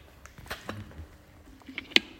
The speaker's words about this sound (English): Sorry, I just got to have a drink of water.